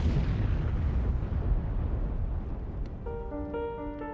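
A loud gas cylinder explosion in a house kitchen bursts out at once, its heavy rumbling roar slowly fading over several seconds as a steady high ringing tone rises near the end. No voices.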